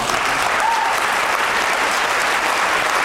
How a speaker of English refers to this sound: I feel very lonely up here, and I'd like a round of applause for how well I'm doing right now.